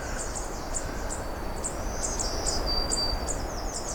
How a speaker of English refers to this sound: Okay, that one was fine. That's the one that's ticking, too. So if you have an ear for it, you'll notice that that black-throated green has one note that's different.